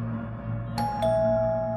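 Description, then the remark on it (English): A doorbell chime rings twice in quick succession, the second ding striking before the first tone fades, both ringing out over a steady low background hum. “Went the doorbell, and before the chime could finish sounding out, it rang again and again, each time quicker than the last.”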